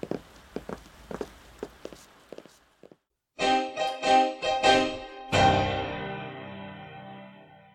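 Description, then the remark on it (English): Footsteps, hard and slightly echoing, cross the rotunda of City Hall for a few seconds, then give way to loud, resonant ringing tones that swell and slowly fade. “Our footsteps echo as we make our way across the rotunda.”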